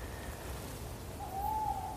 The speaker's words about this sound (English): Listen to that. Gosh. I didn't expect them to be so vocal. It's quite late in the year, but they do hoot through the winter. Owls, tawny owls, like to set up their territories in winter.